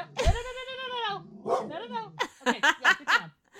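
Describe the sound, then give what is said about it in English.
A female dog barks, starting with a long, drawn-out, whining bark, then a low grumble and a quick string of four or five short, sharp barks. “Let me just get through this, and then you can bark all you want.”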